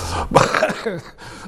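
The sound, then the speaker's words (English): A single sharp sneeze bursts out loudly, followed by a brief breathy, voiced trailing sound as it fades. “Bless you, bless you.”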